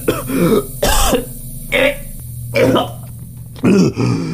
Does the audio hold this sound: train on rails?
no